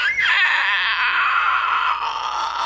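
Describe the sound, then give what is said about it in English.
A loud, piercing screech held steadily for nearly three seconds, shrill and wavering slightly in pitch. It sounds like a human voice imitating the screech, with no talking. “Just hear this loud, ear-piercing screech.”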